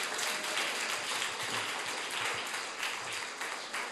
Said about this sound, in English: Clap for your pastor. Clap for your pastor.